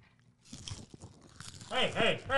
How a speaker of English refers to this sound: Hey! We're chewing in the mic. I went out of my way to not do that.